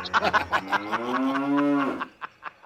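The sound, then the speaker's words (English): A single loud, drawn-out cow moo lasting over a second and rising slightly in pitch, framed by a few short knocks and clicks before and after. “Blah, blah, Viking cow.”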